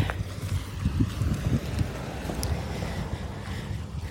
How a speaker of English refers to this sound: A car is about to come by me, so you might hear a little noise. Hang on. Stand by.